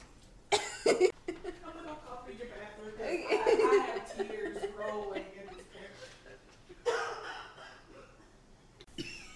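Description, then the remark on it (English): A loud coughing fit from a tickle in the throat: several harsh bursts in quick succession, then a pause and more coughs, mixed with breathy, laugh-like sounds and some muffled voices. “Let me go for your cough because I'm dying.”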